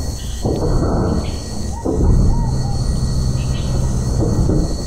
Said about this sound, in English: There was a ship there, hovering, the thunderous sound of its engines filling the jungle around him.